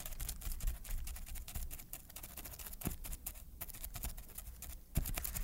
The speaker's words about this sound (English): he once had to create the sound of a crab walking on the beach, which he did by drumming pencils in a sandbox. Let me get another pencil. He tried to recreate the effect without the sandbox for us.